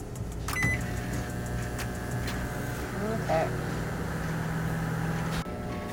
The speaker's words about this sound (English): And we're gonna put it in the microwave for 2 to 3 minutes. Let's do 2.5.